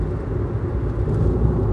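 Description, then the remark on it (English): Two Corvette sports cars rumble past, a deep, steady engine growl that holds at a fairly loud level throughout with no voices over it. “There are 2 Corvettes going by right now.”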